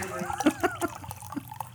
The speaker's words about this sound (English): It's the really loud pouring today. I've never poured people louder. People have always said that I have a heavy pour. I have a deep pour.